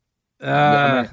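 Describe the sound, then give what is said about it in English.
A single drawn-out, voiced sneeze, loud and tonal, lasting under a second with a brief trailing breath. No talking. “Bless you.”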